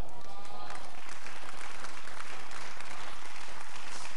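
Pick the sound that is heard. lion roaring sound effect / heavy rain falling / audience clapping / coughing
audience clapping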